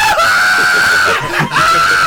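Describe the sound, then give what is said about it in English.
A voice imitates the shrill scream of an animal being killed by coyotes, holding a high, strained tone for about a second, briefly breaking, then rising into another sustained, loud screech. “Another animal's just screaming.”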